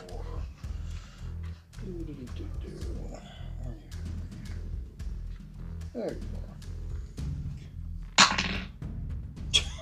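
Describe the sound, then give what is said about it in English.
A single sharp, loud sneeze bursts out near the end, cutting through steady background chatter and low rumbling noise. “Wow, God bless you.”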